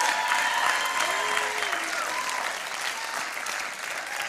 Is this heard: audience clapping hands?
yes